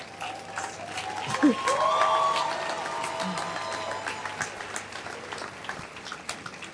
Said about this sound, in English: No, please keep clapping for her. Let her come. Please keep clapping for her.